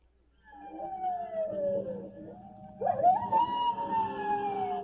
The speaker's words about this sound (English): I wish that coyote quit yowling. It's fretting them.